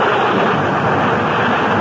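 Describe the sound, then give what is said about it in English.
A loud, steady roar of storm wind, rushing without pause and with no clear gusts or breaks. It is broad and hissing, with no voices. “I don't want you to go back in the storm like this.”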